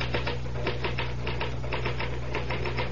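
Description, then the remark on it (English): Rapid mechanical typewriter keystrokes clatter in an irregular, steady run over a low constant hum, moderately loud, with no voices. “Well, the truth is that the typewriter, or rather, Mr. Gahn, does all the brain work.”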